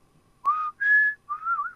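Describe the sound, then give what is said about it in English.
Someone whistles a short melodic phrase of a Christmas tune, three sustained notes, clear, with brief pauses between them and no talking. “I'm just whistling Christmas.”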